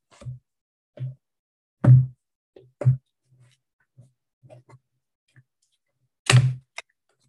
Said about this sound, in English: All right, I'm shuffling the cards.